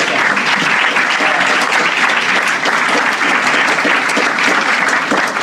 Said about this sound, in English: And everybody give her a round of applause.